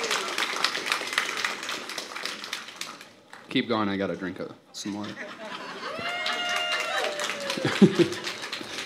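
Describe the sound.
An audience claps and applauds steadily for a few seconds to welcome a speaker, then the clapping fades as a man starts talking into a microphone, with some scattered noise continuing under his voice.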